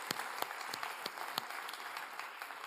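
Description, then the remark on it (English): A church audience applauds its search team and stewards in a steady round of clapping, a dense wash of hand claps with a few sharper, louder claps standing out, continuing at an even level throughout. “And so can we give a round of applause for those guys as well?”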